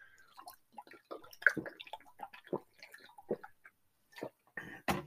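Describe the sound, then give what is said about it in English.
Someone drinks water: a run of small wet clicks and gulps, a brief pause, then a couple of louder swallows near the end. No one speaks. “I got to take a swig here. Take a drink if you got it.”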